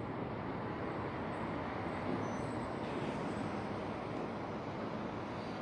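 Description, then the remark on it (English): A City of Ontario garbage truck, number 9147, with blinking lights, fills the street with a heavy engine rumble in a steady, continuous drone, with broad road noise holding at an even level throughout and no voices. “City of Ontario, the dumpster truck. You hear that? Creating audible activity under the state's fake sun while the state is directing impossible light.”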